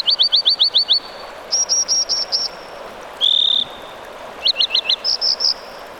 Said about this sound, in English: An American dipper calls across a rushing mountain stream. Its rotund, stone-gray body bobs rhythmically up and down, its feet firmly planted.